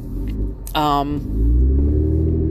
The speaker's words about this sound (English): Let me turn my poor car, my loud car off.